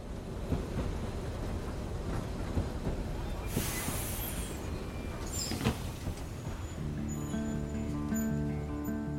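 A train rumbles steadily, with two sharp bursts of hissing air partway through, then a sustained, layered horn-like tone rising near the end.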